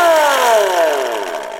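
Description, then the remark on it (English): A loud, steady whirring from a child's whir toy, demonstrated as a sound effect, its buzzy pitch sliding gradually downward as it spins for under two seconds, with no voices. “This is a child's toy. It's like a whir thing.”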